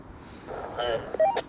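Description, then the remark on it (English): A phone's call button is pressed, setting off a short run of bright electronic keypad beeps, several quick tones in close succession over a faint background murmur. “And I'm going to hit the call button, okay?”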